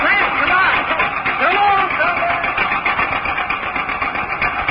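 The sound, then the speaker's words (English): An engine is cranked and catches, settling into a loud, steady rumbling run that fills the whole clip, with some indistinct voices underneath. “Try cranking her again.”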